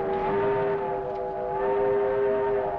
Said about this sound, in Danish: Nu nærmer vi os klimakset, ikke? Og så hører vi togets fløjte.